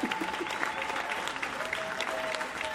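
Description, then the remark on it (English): A crowd applauds on cue, going quiet when a person puts their hands down and loud when they bring them up, in a dense, continuous wash of clapping with faint cheering woven in and no single voice standing out. “They're going quiet when you put your hands down, and they're going loud when you bring them up.”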